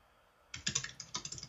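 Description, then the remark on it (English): Rapid typing on a computer keyboard starts after a brief quiet moment, with a quick run of sharp, clicky keystrokes in an uneven rhythm, moderately loud, with no voices. “No, but I can hear you typing like a madman.”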